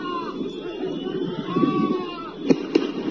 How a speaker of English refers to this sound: Those are gunshots from the government. And they're showing it again.